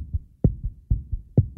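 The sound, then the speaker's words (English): A rapid heartbeat thumps in low, muffled lub-dub pairs, about two beats per second, steady, with no voices. “Does your heart beat faster now?”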